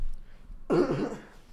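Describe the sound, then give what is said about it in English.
A single sneeze: an abrupt, breathy burst with a short voiced tail that fades within half a second, standing alone after a moment of quiet. “Bless you.”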